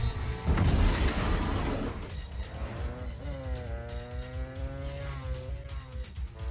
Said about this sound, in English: There he is. It's Arnold. He's on the motorcycle.